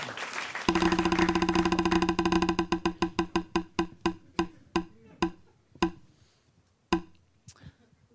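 A prize wheel is spun again with a fast run of sharp clicks that steadily slow, the ticks spreading farther apart until a last few single clicks as it comes to rest, landing on Grindr.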